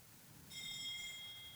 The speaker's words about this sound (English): That's the bell in the background. That's all right.